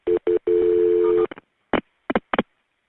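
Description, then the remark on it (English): Telephone tones as an emergency call is transferred to the ambulance service: two short beeps, a longer steady tone, then a quick series of clipped dialing beeps with brief gaps between them, fairly loud and with no voices. “Let me connect you to the ambulance.”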